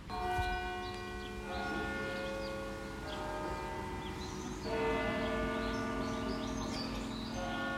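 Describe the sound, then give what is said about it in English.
Church bells ring the hour at 11 o'clock in overlapping, sustained, resonant peals that swell and restart every second or so, with faint birdsong chirping in the background and no talking, on a beautiful day under a deep blue sky with a soft, gentle wind. “There are the bells at 11.”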